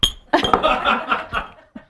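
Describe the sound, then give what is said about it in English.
Cocktail glasses clink together in a quick, bright cluster of ringing taps over about a second and a half, with a soft murmur of voices and a faint chuckle mixed underneath. “Was I like, here's these glasses.”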